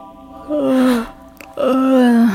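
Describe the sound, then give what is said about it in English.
A woman gasps for breath twice, fairly loud, each strained inhale drawn out into a moaning, voiced tone, with a brief pause between them. “I think she's breathing.”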